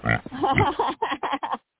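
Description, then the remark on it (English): A human voice imitates a pig oinking: one long, drawn-out snort followed by a quick run of four short, choppy grunts, fairly loud, then a brief pause. “Well, you know, and now we need a hog report. Yes, go ahead, please. Do the I need some report. Oink.”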